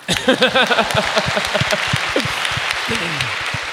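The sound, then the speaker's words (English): An audience breaks into steady, dense applause after a speaker finishes a talk, a continuous patter of many hands clapping at an even loudness, with a voice speaking over the start before fading under the clapping. “I hate when I interrupt clapping.”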